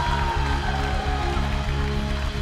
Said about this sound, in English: Come on, let's give God a big clap of praise again. Can we do that?